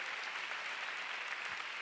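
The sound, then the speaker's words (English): A church audience gives God a big hand, a steady wash of many hands clapping at once with no single claps standing out, holding an even loudness throughout with no voices on top. “Oh, come on, go ahead and give God a big hand.”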